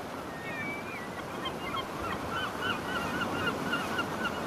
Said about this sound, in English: Hear the birds flying over.